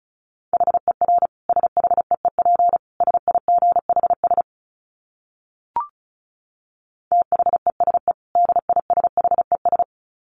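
Rapid Morse code at 35 words per minute: a steady mid-pitched tone keyed in quick dits and dahs, two runs separated by a pause broken only by a single short click.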